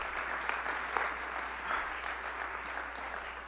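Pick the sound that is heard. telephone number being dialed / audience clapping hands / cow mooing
audience clapping hands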